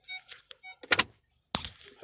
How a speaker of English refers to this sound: I'm parking this car. You know, got the mirror shit. You know, when you back up, you put it in reverse.